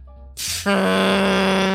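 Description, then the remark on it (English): A voice imitates a loud, drawn-out fart, as let off by a man standing on his front porch at 2 a.m.: a short breathy burst followed by a sustained, buzzing, low-pitched blare with strong harmonics that holds steady to the end. “And just lets off the biggest fart you've ever heard in your freaking life.”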